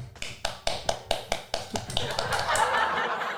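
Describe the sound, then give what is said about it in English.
A soft, polite golf clap: light, evenly spaced claps that thicken into looser overlapping applause from a few people, with faint chuckling underneath. “Golf clap, everyone.”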